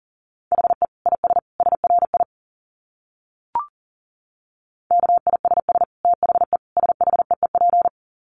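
Rapid Morse code dits at 40 wpm in a steady mid-pitched tone, keyed in quick clusters, with a brief click splitting two runs separated by a short pause.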